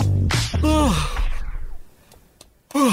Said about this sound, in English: Pick the phone up and do a yawn. It's so easy.